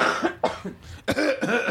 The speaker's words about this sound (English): Can I cough now? Yes, you can. Cough all you want. Oh, I like this. Oh, we can all cough together.